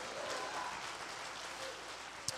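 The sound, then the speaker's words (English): An audience claps hands in response to a call to clap and shout hallelujah, in a steady, dense wash of overlapping claps that holds at an even level for a couple of seconds, with one sharper clap or knock near the end. “If you are, clap your hands and shout hallelujah.”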